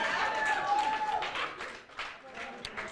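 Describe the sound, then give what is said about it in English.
An audience claps in a steady, moderate round of applause, with voices mixed in and a bit of cheering, fading slightly toward the end. “I do need y'all to clap for me, because I worked hard on this, y'all.”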